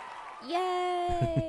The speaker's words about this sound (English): Yay! I like how they're cheering for themselves.